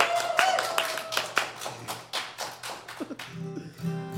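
A small audience claps steadily for several seconds, the sharp overlapping hand claps forming a lively round of applause that thins slightly toward the end, close and fairly loud in a room.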